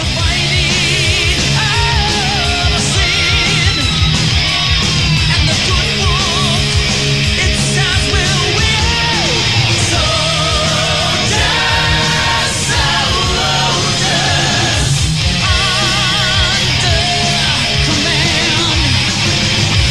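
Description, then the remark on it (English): A loud, dense wash of concert sound: the crowd singing the last song of the night together over booming low-end music, steady and unbroken from start to finish with occasional yells rising out of the mix. “The crowd sung very loud.”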